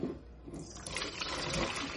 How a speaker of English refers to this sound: So I'm going to strain the potatoes. I've got a strainer in my sink. Hot.